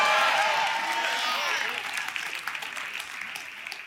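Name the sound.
audience applauding and cheering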